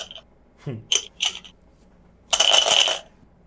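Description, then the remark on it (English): A few sharp plastic clicks as four eight-sided dice are scooped up, then a dense rattle of the dice tumbling across a table for about a second. No one speaks. “Hold on, I just have to find the dice.”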